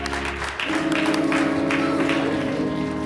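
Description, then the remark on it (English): A church audience breaks into steady, sustained applause, a hand clap of praise for the church leadership on Deacon and Deaconess Day, many hands clapping together at a loud, even level, with a low organ-like tone holding underneath for the whole stretch. “hand clap of praise for the leadership of this house.”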